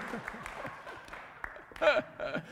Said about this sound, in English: Who started that slow clap?